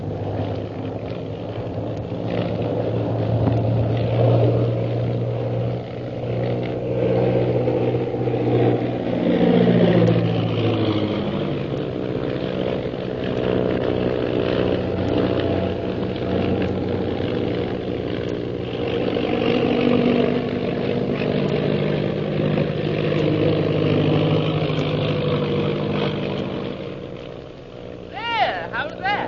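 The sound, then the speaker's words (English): A propeller airplane engine drones steadily and loudly in flight on the way to Shanghai, its pitch sliding noticeably partway through as the engine changes speed, with muffled voices at times over the roar. “I don't know that coming up in this plane with you was such a good idea.”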